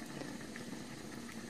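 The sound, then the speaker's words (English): A facial steamer hisses steadily during a facial treatment, held at a safe distance from the face: a continuous soft rush of steam over a low, bubbling hum, with no speech and no breaks in the sound. “Okay, so just so that you trust me, I'm going to hold steam.”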